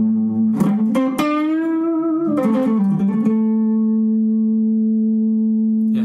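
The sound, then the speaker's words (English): A few sharp plucked notes with a bending, wavering pitch ring out, then a single held tone hangs in a deep, big, hall-like clean spring reverb, washing out slowly and evenly. There is no talking. “Yeah, like a big, it's kind of a deep reverb when you've got it in that.”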